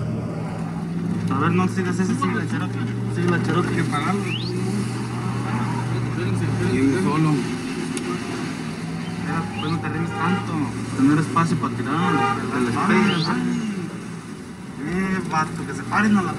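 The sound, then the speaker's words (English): Car engines drone and rev continuously throughout during a car chase after a white Jetta, with shooting, a steady rumble with occasional surges, while voices talk and shout over the noise. “Chasing cars and shooting.”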